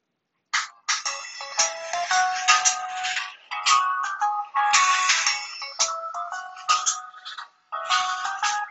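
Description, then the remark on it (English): The Verizon Wireless cell phone ringtone plays a bright, quick, busy melody of tonal beeps, looping in bursts with brief gaps, fairly loud, with no talking over it. “Now here are the ringtones.”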